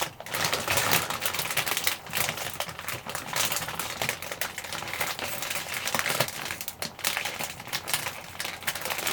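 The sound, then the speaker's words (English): A bag rustles and crinkles, a dense, continuous run of irregular crackly scrunching that lasts the whole stretch without any talking. “Okay, anyway, so the next thing is bag rustling.”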